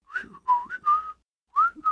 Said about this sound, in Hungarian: Most már fütyül. És ő is fütyül. Ő is fütyül.